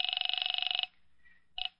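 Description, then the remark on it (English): A telephone rings over the line as an operator connects a call to a police station: one rapid, trilling burst lasting nearly a second, a short pause, then the next ring begins. Thin and fairly loud, with no voices. “I'm ringing.”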